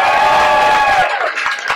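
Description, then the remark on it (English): A crowd celebrating a reopening on the north side of Milwaukee cheers and shouts loudly all at once, a dense roar of voices that thins after about a second into scattered whoops with a few sharp claps. “If you're glad you woke up this morning, clap your hands and make some noise.”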